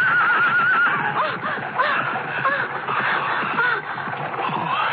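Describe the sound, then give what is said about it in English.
A horse-drawn chariot rushes along an avenue in a loud, continuous rumble as horses whinny with high, wavering neighs several times over the dense clatter, with no voices. “Get out of the way, girl, the chariot!”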